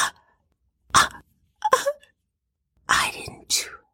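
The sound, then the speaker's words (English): A woman's voice whimpering in short, breathy bursts on the 12th floor of a dark building, several separate sobbing cries with pauses between them, fairly clear with no other sounds. “As people make their way across the dark building, with errant 2x4s strewn about, they can hear a voice whimpering.”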